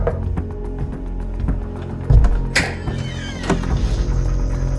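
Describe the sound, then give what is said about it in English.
A few sharp knocks on a door ring out over a steady low hum: one heavy thud, then a brighter rap shortly after and another a second later, with no voices. “You'll hear a knock on the door.”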